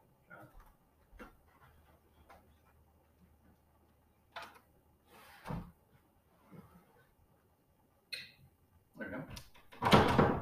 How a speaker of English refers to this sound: Now, let's close the doors, keep it quiet.